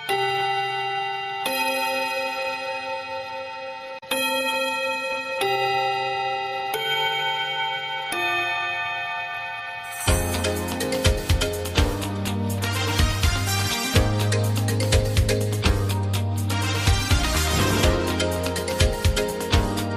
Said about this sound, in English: That bell means this week's meeting of the After School Anime Club has come to a close.